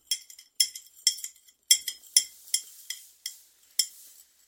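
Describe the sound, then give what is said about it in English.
A spoon clinks rhythmically against the sides of a glass as one scoop of powdered drink mix is stirred into a small amount of water, bright metallic taps repeating about twice a second, with no voices. “Now I will stir it up.”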